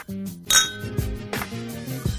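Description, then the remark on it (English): Glasses clink together a few times, each bright tap ringing out with a lingering glassy tone, like a toast, with no talking. “And until next time, cheers.”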